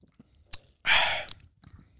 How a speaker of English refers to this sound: I'm going to have another sip and then I'm going to give my rating.